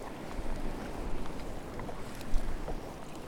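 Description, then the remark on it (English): Steady wind rushes and buffets the microphone while water sloshes as a kayak is paddled across the sea into a force 3 wind, with no white caps on the surface, and faint splashes from the paddle strokes. No one speaks. “I only feel it because I'm paddling into it.”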